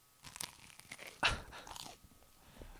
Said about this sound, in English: Listen to me chew.